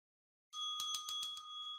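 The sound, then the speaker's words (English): A bright ringing bell starts abruptly and sustains steady high tones, with about five quick rapid strikes pulsing through the ring before it continues alone; no one speaks. “These injuries are killing us so much to the point that we had to go and ring a ding ding and get on the phone with Josh Norman.”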